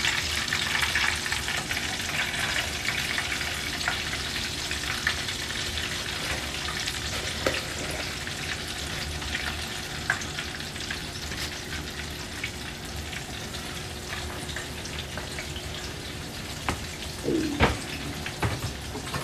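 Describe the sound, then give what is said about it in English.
Other chicken pieces frying in oil for about 5 minutes, a steady dense crackling sizzle across the whole stretch with scattered sharper pops and a brief clatter near the end. No one speaks. “And while that's sitting, we're gonna take the other chicken pieces and give them about 5 minutes to fry.”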